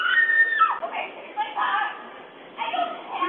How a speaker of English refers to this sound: A nearby doorbell camera captured the desperate cries. Tearing through what was a quiet afternoon near Lake Nokomis.